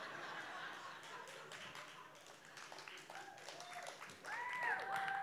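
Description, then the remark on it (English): An audience at a sermon in Oklahoma City claps steadily for several seconds, many hands producing a dense patter of sharp claps, with murmuring voices and a few high whistle-like tones rising toward the end. “That is so not a football clap.”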